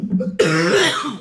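A single harsh, raspy cough bursts out after a low murmur, trailing into a gravelly throat-clearing rumble that fades over about a second.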